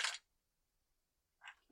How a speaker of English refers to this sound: Good dice tower usage. Makes a good noise.